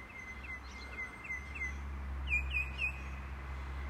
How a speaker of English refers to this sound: The birds don't wait to sing their song. When it's time to sing the song, they sing the song.